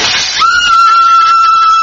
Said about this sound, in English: Madre mia, Cisco smashed the lamp. Down on the floor. Room dark, Cisco.